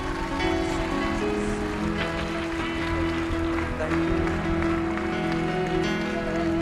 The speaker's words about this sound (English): People, I want you to just clap, and I'm going to pray for these people.